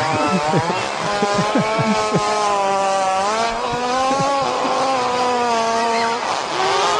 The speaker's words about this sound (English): It said horse fart.